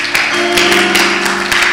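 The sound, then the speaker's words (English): A crowd claps hands for Jesus in a steady, rhythmic beat, sharp bright bursts recurring about every half second over sustained, droning music. “I think we can clap our hands together for Jesus.”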